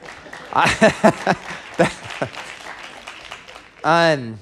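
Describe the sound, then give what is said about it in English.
Scattered audience clapping, a few sharp claps standing out over a murmur of voices, fading before a short, loud voiced cry near the end. “You know, Walt Disney would be turning in his grave if he knew that we were clapping for that.”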